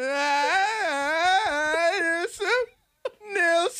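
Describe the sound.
A person does a reverse yell, as in the backwards game of suck and blow, a loud, strained, wavering cry drawn on the inhale that sounds almost like a whimpering wail, breaks off briefly, then starts again.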